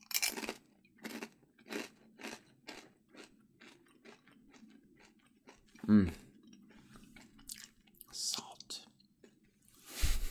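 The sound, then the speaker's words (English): Crisp, crunchy chewing of Juanita's chips (corn, oil, salt and a trace of lime), a steady rhythm of about eight bites in a row, then scattered softer mouth noises and whispery sounds, with a louder crunch near the end. “I'm going to tune a little more into that as I continue to snack today.”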